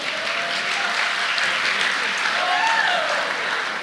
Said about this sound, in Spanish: Un aplauso, hermano.